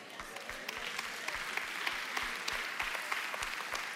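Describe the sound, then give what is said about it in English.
An audience claps steadily during a pastor's sermon, many hands blending into a dense, crackling wash of applause with a few sharper claps standing out, holding an even loudness throughout with no voices. “It is easy to clap when a pastor talks about a sin that you don't struggle with.”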